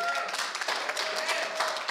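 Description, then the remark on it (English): A crowd applauds Detroit Council President Mary Sheffield in a steady, dense wash of clapping that holds at an even level for the whole stretch, with faint voices or cheers mixed into the noise. “We ought to give her a round of applause because she made this thing happen.”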